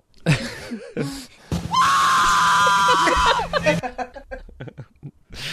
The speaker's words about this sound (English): Now, here's the part of the podcast where we play out-of-context screaming.